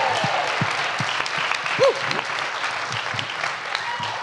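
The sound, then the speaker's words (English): Steady applause from a convention audience, a dense wash of many hands clapping at a constant level throughout, with a brief voice-like tone rising out of it midway. “Keep on clapping.”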